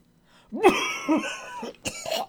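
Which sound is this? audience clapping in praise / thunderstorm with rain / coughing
coughing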